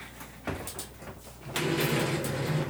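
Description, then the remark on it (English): Chairs are moved back into place, scraping and sliding across a hard floor, with a sharp knock near the start and then a steadier, grinding drag that grows louder. No one speaks. “Putting the chairs back.”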